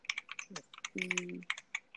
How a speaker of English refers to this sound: Oh, yeah. Sorry, and then I'm typing away. A new Marvel. We hear you typing.